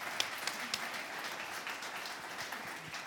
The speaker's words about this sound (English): a wee round of applause, please.